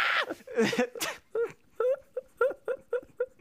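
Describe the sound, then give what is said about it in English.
A person imitates a gorilla scream, opening with a loud, harsh shriek and breaking into a quick series of about eight short, rising hoots of similar pitch. “That was a good gorilla scream.”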